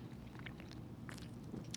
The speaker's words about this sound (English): Let's take our first sip.